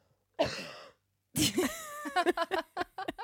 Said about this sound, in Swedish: Jag även fått den här lite mer skrapiga, mullrande hostan. Lyssna här.